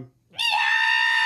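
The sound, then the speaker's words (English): A person lets out a loud, sustained imitation scream, starting abruptly after a brief pause and holding a bright, piercing tone to the end. “And I did put into play the Scream.”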